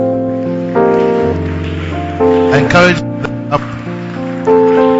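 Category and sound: crowd, audience clapping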